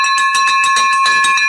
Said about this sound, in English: That, my friend, is a victory bell for an amazing, amazing wholesale deal that Chris has done.